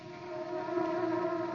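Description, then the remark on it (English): A loud snoring sound that comes out as a steady, buzzing drone at a low-mid pitch, swelling slightly after a moment and holding evenly with no talk over it. “My, that boy snores loud.”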